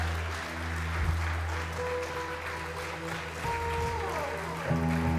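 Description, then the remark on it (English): A large church audience applauds the Lord Jesus steadily and loudly during worship, dense clapping with sustained organ or keyboard tones holding underneath. “Now let me hear you applaud the Lord Jesus 10 times. 10 times more than that. Keep it going.”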